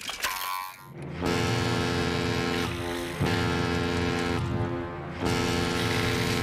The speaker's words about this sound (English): Now, we've seen this alarm have the power to wake up others on Conch Street, but we actually get full confirmation here that Squidward is unexpectedly awakened by SpongeBob's boat alarm.